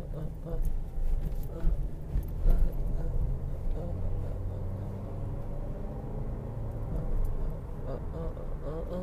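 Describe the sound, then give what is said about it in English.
A truck rumbles on a road on the outskirts of LA, heard while driving, with a deep, steady engine drone that fills the whole stretch, its low roar swelling slightly early on, while a voice murmurs faintly underneath. “Oh, fuck this. Fuck this truck.”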